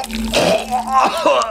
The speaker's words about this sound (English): I staggered back and vomited onto the floor. I sucked in a huge breath, trying to force myself to calm down, but I couldn't hold it against the next rush of vomit, and I spewed the rest of my dinner onto the kitchen floor.